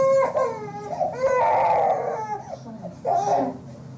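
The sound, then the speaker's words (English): A five-month-old infant boy cries in loud, strained wails with strong harmonic bursts, rising into a sustained high-pitched scream before breaking into shorter sobbing cries, recorded on an iPhone placed under a couch; his crying changes from a distress cry to a pain cry. “It started with cussing, then you hear slap noises, and his crying changes from a distress cry to a pain cry.”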